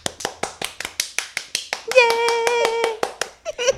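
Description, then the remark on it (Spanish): People clap their hands in a quick, steady rhythm, sharp bright claps roughly five per second. A high voice calls out over them for about a second before the clapping picks up again. “Este es el segundo episodio que aplaudimos.”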